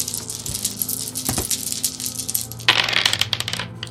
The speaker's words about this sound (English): They also start with 2 thunder dice, because that's what it says in the myth sheet. So I'm grabbing my 2 black dice. Now I'll roll them and see what happens.